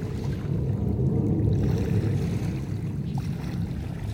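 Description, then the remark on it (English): An airplane drones by in the background, a steady, low rumbling engine roar that holds fairly even for the whole few seconds, with no voices over it. “And you may hear the airplane in the back”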